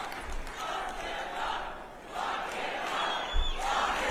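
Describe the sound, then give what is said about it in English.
A large MAGA crowd at a conference chants the slogan "lock him up" in unison, the phrase repeating in a steady rhythm of loud, roaring swells, with no single voice standing out. “so of course the crowd is chanting one of the favorite chants within the MAGA crew, lock him up, or it used to be lock her up with Hillary, lock Fauci up, they'll say that too.”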